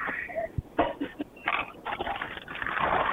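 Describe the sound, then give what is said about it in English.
Bags rustling and crinkling while paying at a Tim Hortons, in short, irregular bursts, a dry papery-plastic scrunching that rises and falls in loudness for a few seconds with no clear speech. “I hear the rustling of bags.”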